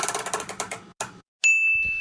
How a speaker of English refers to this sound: would you be willing to spin the chore wheel for us?